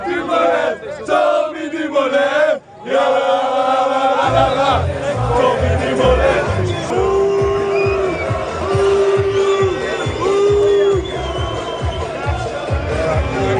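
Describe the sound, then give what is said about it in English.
A large roadside crowd on Alpe d'Huez boos and jeers a passing team truck loudly and continuously, with many voices blending into a sustained roar, joined after a few seconds by rhythmic low thumping and a repeated horn-like tone. “we just heard a lot of booing.”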